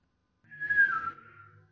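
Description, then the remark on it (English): A person whistles a single bird-like note as a greeting, the note sliding gently downward and clear, then fading out. No one speaks. “So, he makes a whistling sound.”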